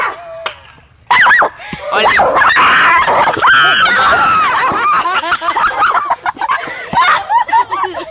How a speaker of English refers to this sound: Yo. Oh my god. Yo, bro. That is a mean little dog.